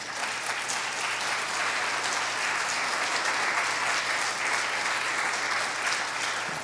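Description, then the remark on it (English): An audience applauds steadily, a dense wash of many hands clapping at an even, fairly loud level for several seconds, with no voices rising above it. “I'm not saying that for any applause.”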